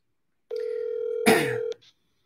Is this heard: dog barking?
no